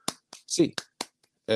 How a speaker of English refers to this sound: Hands up, Bruins fans. 8 clap time, baby. And 1, 2, 3, 4, 5, 6, 7, 8.